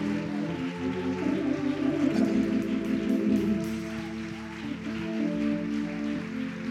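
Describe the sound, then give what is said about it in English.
An audience claps steadily for the fathers standing during a service, a dense patter of applause spread throughout, layered over sustained music with a deep bass line and held chords. “Can we give them all a hand clap of appreciation?”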